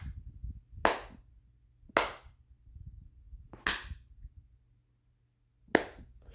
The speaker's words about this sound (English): Very classy. And here's a slow clap for you.